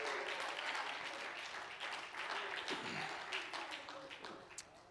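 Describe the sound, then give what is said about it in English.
An audience claps their hands in praise during a morning church service, a dense, continuous wash of many overlapping claps with a few voices calling out beneath it. “Clap your hands and praise Him this morning.”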